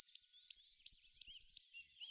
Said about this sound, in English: Some bird sounds are very high-pitched indeed.